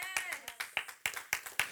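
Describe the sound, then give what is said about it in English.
Brief burst of audience clapping: sharp, bright claps arriving at an uneven, fairly quick pace, moderately loud, with a faint voice briefly audible underneath at the start. “This means, you'll clap better after this.”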